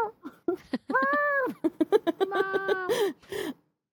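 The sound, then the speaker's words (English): A male cat meows loudly: a drawn-out, rising-and-falling meow, then a run of choppy shorter cries that stretch into another long wavering meow before fading. “He's meowing so loud.”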